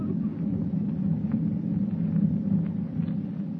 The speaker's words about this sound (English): With thunder rolling across the dark ocean like a warning of impending doom